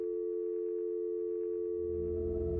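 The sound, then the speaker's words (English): A steady, continuous telephone dial tone after a call ends hums unbroken for the whole stretch, a flat electronic drone with a faint low rumble creeping in toward the end. No one speaks. “Rayanne's left screaming her daughter's name into a dial tone.”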